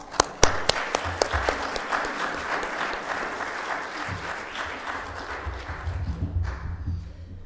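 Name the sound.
audience applauding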